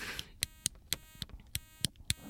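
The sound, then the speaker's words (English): A steady electric buzz hums from a switched-on device, punctuated by sharp clicks repeating roughly every quarter second, fairly quiet, with no voices. “I bet the clicking on and off. Ooh, that's good. Oh, but it's like buzzing.”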